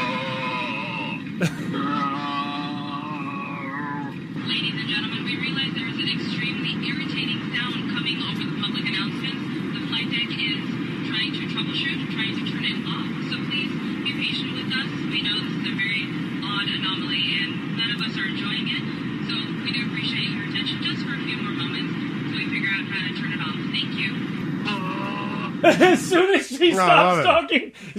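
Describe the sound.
A man's voice makes muffled grunting noises over the cabin intercom of an American Airlines flight, nearly continuous against the steady drone of the cabin, ending with a short burst of clatter.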